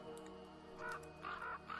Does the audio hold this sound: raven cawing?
yes